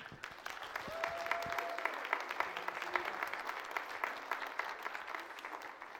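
A church group applauds the woman who teaches the children, steadily for about six seconds: dense overlapping claps forming an even, fairly soft wash of sound with no voices, and a brief thin tone floating over it early on.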